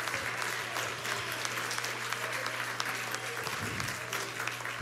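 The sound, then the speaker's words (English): A church audience claps steadily and densely for about five seconds, shouting to God, with scattered voices calling out beneath the applause and a low steady hum running underneath. “If you believe that, why don't you clap your hands and shout unto God with the voice of triumph.”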